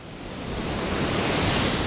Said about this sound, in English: We stand above a surging spray of water that's about to leave the plant and enter the Willamette River.